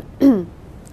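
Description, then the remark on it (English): A single short cough or throat clear from someone with a tickle in their throat, fairly loud, with a raspy voiced edge that fades quickly, followed by near silence. “And I probably will still continue coughing whilst I read more of this.”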